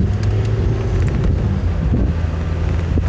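A steady, loud low rumble of a car being driven on the road, with buffeting wind noise across the microphone and no voices for a few seconds.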